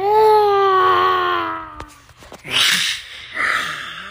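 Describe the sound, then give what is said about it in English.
A child imitates a loud growl: one long, strained, high-pitched vocal roar lasting nearly two seconds, then a sharp click and two short, breathy, hissing bursts. “And you growled one more time, really loud.”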